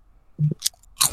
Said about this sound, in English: This nigga munching, bro.